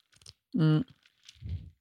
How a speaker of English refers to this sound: I'm gonna take a sip of this drink.